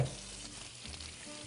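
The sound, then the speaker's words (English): A pot of water at a rolling boil for cooking pasta gives a steady, soft bubbling and hissing that continues evenly throughout. It is fairly quiet, with no voices. “Now that our water is boiling, what we'll do is we'll add some salt to the water.”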